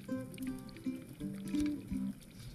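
Water boiling and bubbling in a kettle on the stove, a soft, steady run of gurgles and small pops at low volume, with no voices over it.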